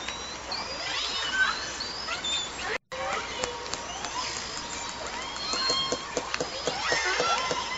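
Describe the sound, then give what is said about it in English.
Orca calls: rising and falling squeals and whistles with scattered clicks over a steady underwater hiss, continuing throughout except for a brief silent gap partway through. “Is that it? Orca sounds?”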